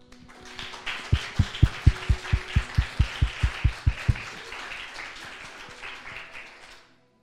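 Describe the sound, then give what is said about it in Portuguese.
An audience applauds, a broad wash of clapping with about a dozen strong rhythmic claps beating in unison near the start, then scattered applause carrying on before fading out. “Aplausos, Senhor Jesus.”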